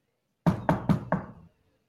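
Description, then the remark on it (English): Four firm knocks, louder after earlier quiet knocking, on a wooden door in quick, even succession, solid and resonant with a hollow thud, fairly loud, with silence before and after. “You knock quietly. Nothing. I knock a little louder.”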